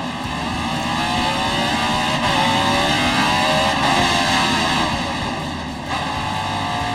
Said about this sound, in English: Seen something that's kind of rather simple, but it blows the engine up because over-revving the engine takes away any chance for a victory. Never a good sound, a heartbreaking sound in wine country for Allmendinger.